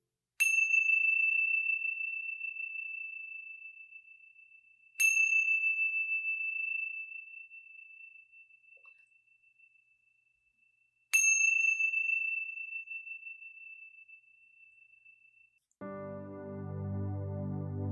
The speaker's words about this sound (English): When you hear the sounds of the chime, gently coming back into this space.